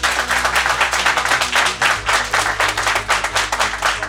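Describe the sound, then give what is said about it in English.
A debate audience applauds steadily for about four seconds to vote that there was not an existential threat to democracy on January 6th, a dense wash of many hands clapping at a fairly even, loud level with no one speaking over it. “And if you feel there was not an existential threat to our democracy on January 6th, could you please applaud?”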